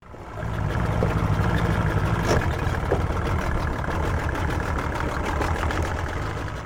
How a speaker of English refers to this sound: Latimer Rowe eases his boat into dock. He's in charge of the City and the Sea's Postal Service and uses his boat to make the rounds on the coastal circuit.